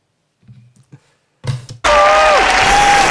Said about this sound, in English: Applause there for that.